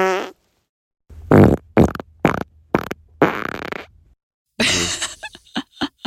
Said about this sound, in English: Those farts were